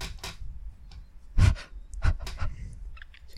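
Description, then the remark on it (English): Heavy, rhythmic panting breaths of a man running repeat, several sharp bursts of air in a steady running cadence with a faint low rumble underneath; no one speaks. “It sounds like he's out of breath, but he's actually taking in the optimum amount of oxygen to sustain that pace.”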